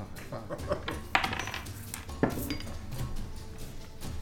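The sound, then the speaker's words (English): Red dice, rolled for initiative, clatter across a hard tabletop, a steady rattling with two sharper knocks as they bounce and tumble to a stop. “I'm not really liking the red dice. I haven't rolled higher than a 9.”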